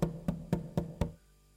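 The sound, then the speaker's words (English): Five firm knocks on a wooden door in a quick, even rhythm, fairly loud, followed by a brief quiet moment. “I won't answer the door. So you can just knock till your knuckles bleed.”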